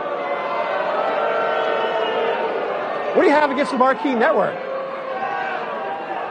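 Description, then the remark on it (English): A large crowd boos the mention of the Marquee Network in a steady, loud, low drone that fills the whole clip, while one man speaks over it briefly in the middle. “You guys won't, you won't be booing about the Marquee Network in 1 year.”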